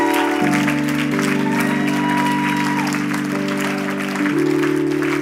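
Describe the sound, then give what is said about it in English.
An audience claps steadily and loudly for the crew and guest services team for the full few seconds, the dense applause blending with sustained organ-like chords that shift partway through. “You're clapping because their faith brought you the miracle that you're about to receive.”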